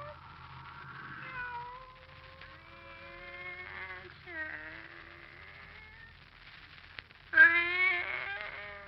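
A pet cat named Kitty meows in long, drawn-out, wavering cries, several in succession, ending with a louder, sharper yowl; the sound stands alone without talking.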